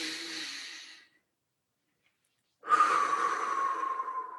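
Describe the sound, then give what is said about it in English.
A breathy exhale fades out, then after a short silence a long, deep inhale follows during a beach ball breathing exercise as the arms sweep up and around, airy with a slight whistling edge, and no one speaks. “We go up and around the ball as we breathe in.”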